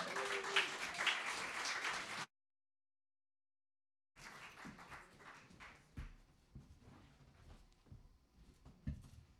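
An audience in Belfast breaks into a round of applause for an artist, a dense wash of many hands clapping that cuts off abruptly, then resumes more thinly with scattered claps and a few soft thumps.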